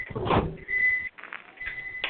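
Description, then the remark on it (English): A microwave oven heating tea, its steady whining hum joined by rattling noise, briefly dropping out midway before humming on again. No one speaks. “Somebody's heating something up in the microwave.”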